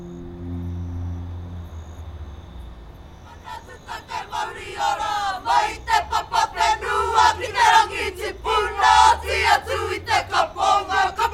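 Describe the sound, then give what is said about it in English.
A kapa haka group at a kapa haka wānanga, practicing for the upcoming Te Aroa Secondary School's competition, chants together in loud, forceful, rhythmic bursts, voices rising in unison with sharp accented shouts. Quiet insect-like chirping and a low hum come before the chanting begins. “It's a kapahaka wānanga, and the group is practicing for their upcoming Te Aroa Secondary School's competition.”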